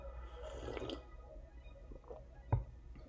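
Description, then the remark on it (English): A quiet, wet slurping sip of coffee lasting about half a second, followed by small liquid sounds and a single sharp clack like a mug being set down. “I haven't had a lot of coffee this morning, so I'm going to take a sip right now so you can understand me.”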